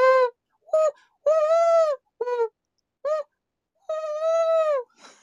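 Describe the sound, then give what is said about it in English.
A person imitates an owl, letting out about seven loud, honking hoots, some clipped short and two long and drawn out, with brief silences between them. “Did you like my owl noise?”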